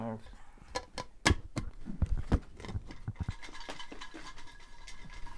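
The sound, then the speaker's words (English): Paper slips rustle and rattle as they're shaken inside a container for a prize draw, in quick irregular bursts that peak in the first half, then settle into a softer, steady shuffling with faint voices underneath. “Do you want to shake that around again? One more last final shake.”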